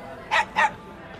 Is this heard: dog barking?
yes